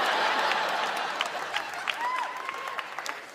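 A crowd applauds in a dense, steady wash of clapping that slowly thins toward the end, with a brief thin whistle-like tone sliding through partway.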